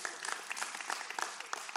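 An audience claps steadily, many hands producing a dense, crackling patter of sharp claps with no voices over it, sustained for the whole short stretch at a moderate level.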